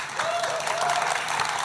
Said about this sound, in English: So a big round of applause, please, to our panel who have been fantastic.